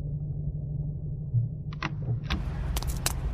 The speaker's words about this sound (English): Stop the car, Margot. Here's the armory.